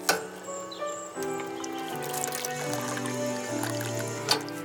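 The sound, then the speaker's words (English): A drinking fountain in an aircraft hangar runs with a steady, cartoonish gurgle whose tone steps through a few pitches, continuous for a few seconds with no one speaking. “Ah, there's the water fountain.”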